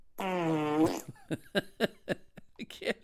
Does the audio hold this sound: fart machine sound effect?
yes